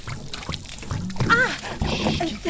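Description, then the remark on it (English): Cold water is poured from bottles over someone's hair, pouring and splashing steadily for a couple of seconds, while a voice makes brief exclamations over the running liquid. “There are two bottles over there, enough for two. Now it's going to be a little cold. Just pour”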